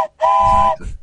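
A single loud train whistle blast holds a steady, harmonic tone for about half a second, with low rumbling underneath, then cuts off abruptly.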